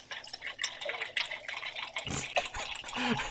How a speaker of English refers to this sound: That's not peeing. He's pouring a drink. He's pissing in his cup, and now he's going to drink it.